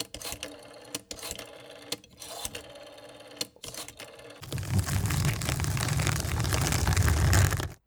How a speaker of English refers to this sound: I'll just use this ancient rotary phone here to make a few phone calls.